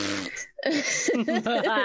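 A loud fart sound effect: a short buzzy blurt, a brief pause, then a longer sputtering rasp whose pitch wobbles up and down before cutting off.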